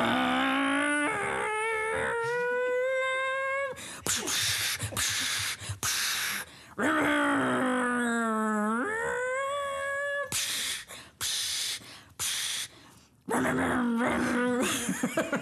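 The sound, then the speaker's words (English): A person vocally imitates a race car crashing into and knocking other cars out of the way, with long revving engine hums that rise and fall in pitch, broken up by harsh, noisy crash bursts, loud throughout. “See, okay, so I was making crashing sounds because I was knocking other cars out of the way.”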